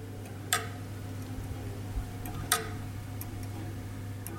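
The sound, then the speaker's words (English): An electromechanical pendulum clock in the Meridian Room, its pendulum gently moved by hand, ticks slowly and steadily, sharp clicks roughly every two seconds, fairly quiet, over a low steady hum with no voices. “It's kind of electromechanical, and I can gently move this pendulum here, and the clock will tick.”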